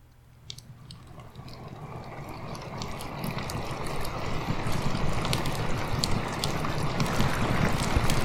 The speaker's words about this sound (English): Or there's this one here. This one is rain and fireplace sounds in a treehouse.